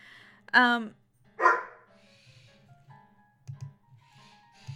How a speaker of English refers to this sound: And there's my dog barking. How lovely.